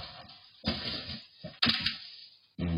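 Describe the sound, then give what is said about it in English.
A man farts in a few loud, sputtering low bursts with short pauses between them, ending on a steady buzzing tone, while trying to make a grilled cheese sandwich after coming home from a drink with friends. “He farts.”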